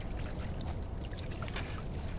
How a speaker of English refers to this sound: And to his delight he caught the sound of trickling. Clambering a few steps up, he found a tiny stream of dark water that came out from the hillside and filled a little bare pool, from which again it spilled and vanished then under the barren stones.